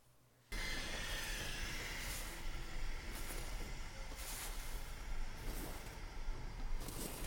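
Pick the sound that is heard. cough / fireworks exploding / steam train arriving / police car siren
steam train arriving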